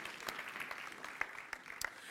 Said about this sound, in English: Amen. Amen. Clap your hands as you've been seated.